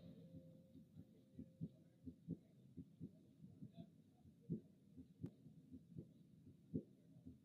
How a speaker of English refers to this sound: Damn, so you think if you deaf, that's all you hear is just a heartbeat? That's tough.